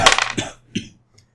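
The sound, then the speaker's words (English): Dice from a different set rattle and clatter across a hard tabletop as a player makes a tracking roll in a game, a quick burst of clicks followed by one louder clack as they settle, then a faint final tick. Fairly loud, with no talking. “I'll use a different set of dice.”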